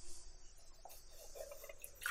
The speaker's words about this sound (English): All right, I'm pouring out my potatoes, or draining the potatoes